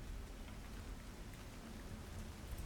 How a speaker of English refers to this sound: And you spend long enough in this place, you tend to just end up ignoring the constant rain, but things are changing.